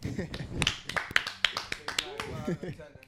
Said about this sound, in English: Yeah, baby. Cheer. Clap it up, please.